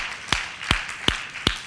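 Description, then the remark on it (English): Four sharp, evenly spaced claps ring out in a steady rhythm, like an audience clapping in unison, with no talking over them. “Go ahead and clap.”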